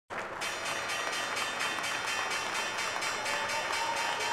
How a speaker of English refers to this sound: That allegedly is an official New York Stock Exchange bell sound.